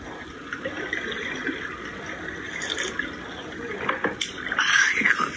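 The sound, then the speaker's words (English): Water flows and splashes steadily from a small waterfall in cold weather, a continuous rush with a few brighter splashes that grow a little louder toward the end. “This is the waterfall you wanted really bad.”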